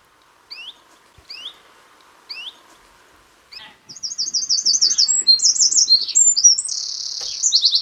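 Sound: birds chirping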